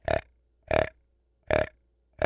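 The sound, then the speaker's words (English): A voice imitates a whitetail buck's small grunt: four short, low, throaty bursts in a steady rhythm, evenly spaced with brief silences between them. “You can just small grunt. That buck that came by me on Wednesday at 5 o'clock, this is what he was doing.”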